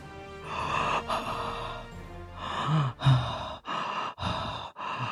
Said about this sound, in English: Are you eating a donut? Like, why are you panting? What the fuck is going on?